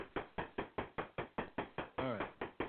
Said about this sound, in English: Somebody's knocking, trying to get in. Are they trying to get in, or is the tire flat, and now it's banging?